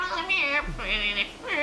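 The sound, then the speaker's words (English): A person imitates a cat, giving a few drawn-out, whiny meows back to back, their pitch sliding up and down, as part of a circle game in which they act like a cat doing a profession. The voice is fairly loud and carries no ordinary speech. “You go into the middle of the circle, and you act like a cat, but you do a profession.”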